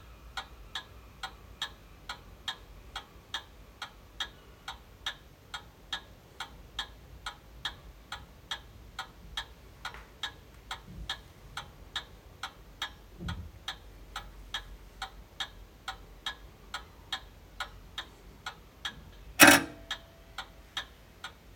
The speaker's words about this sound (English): So we present the almost hypnotic sound of the main clock in the Mayor's Parlour here at Town Hall as it ticks away and the seconds count down to the new chapter of local government in our borough.